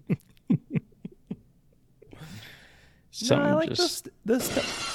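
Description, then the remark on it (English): A few short clicks and a breathy hiss lead into two loud, harsh crashing bursts, a voice imitating the glass shattering of Stone Cold Steve Austin's wrestling entrance, rough and noisy with a vocal edge. “The Stone Cold glass is just too good.”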